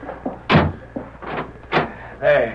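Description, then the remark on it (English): A door bolt is slid shut: a few sharp clunks and scraping knocks in quick succession, with a brief murmur of a voice near the end. “Put the bolt on that door”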